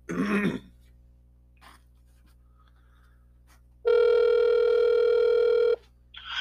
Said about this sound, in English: Let's get him on the phone and get this podcast started. Yeah, call him. There, it's ringing.